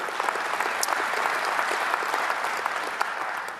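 An audience at Community Christian Church gives itself a round of applause, clapping together steadily and densely, many hands blending into a broad wash of sound with a few sharper individual claps standing out, no voices heard.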